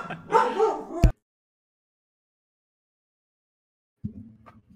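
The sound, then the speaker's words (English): A dog barks in a quick, loud burst of yaps, then goes silent for a few seconds before letting out another bark, with no voices. “I'm gonna kill my dog.”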